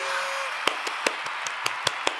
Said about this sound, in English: All the applause noises, because I'm finally here.